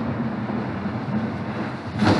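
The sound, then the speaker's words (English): An air conditioner runs with a steady, low droning hum and broad whooshing noise, unchanging for the whole stretch, with a slight rise in rush near the end and no voices. “That's our air conditioner.”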